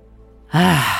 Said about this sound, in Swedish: Okej, då kör vi. Du andas in genom näsan.